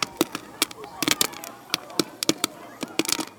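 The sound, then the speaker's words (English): Fireworks crack and pop in quick, irregular, sharp bursts, while a crowd murmurs faintly in the background between the bangs. “Sounds of a crowd watching fireworks. This crowd is watching fireworks, right?”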